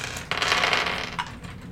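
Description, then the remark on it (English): Dice rattle and clatter in a dense burst lasting about a second, followed by a couple of lighter clicks as they settle. No one speaks. “Got the good dice and the bad dice.”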